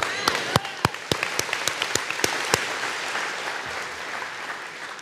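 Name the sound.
audience applause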